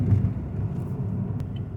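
vehicle, car engine rumble

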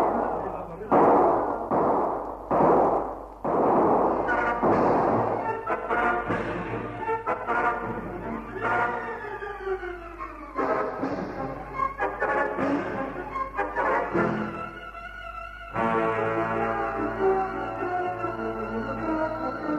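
sound effect, gunfire

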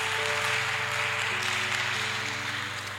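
crowd, audience clapping

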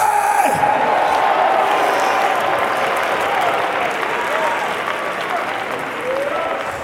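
crowd, audience applauding and cheering

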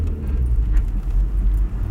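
vehicle, car engine being started

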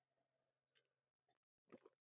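food or drink, sipping hot coffee

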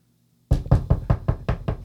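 household object, knocking on a door

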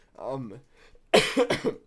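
human body sound, coughing

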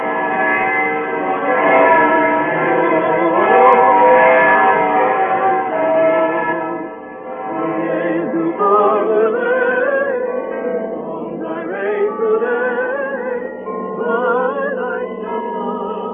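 signal or alarm, church tower bells ringing

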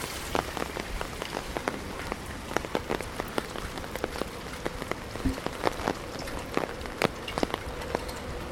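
nature, rain falling

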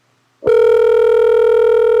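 signal or alarm, phone call ringing tone

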